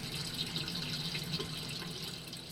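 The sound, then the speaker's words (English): In an aquaponics setup, water filters through gravel where bib lettuce grows and drips steadily back into a tilapia fish tank, a continuous splashing patter at an even level with no voices. “That waste acts as a fertilizer for bib lettuce plants, and the water filters through the gravel to drip back to the fish.”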